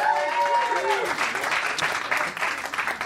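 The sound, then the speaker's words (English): A comedy show audience at the Virgil bursts into steady, dense applause that continues for the full three seconds, with a brief rising-and-falling cheer voiced at the very start. “Clap your hands for Erin.”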